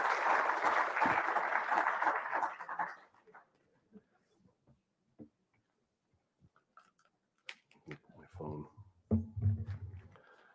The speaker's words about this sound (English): As the microphone will make its way around. Oh, yeah, you can clap, sure.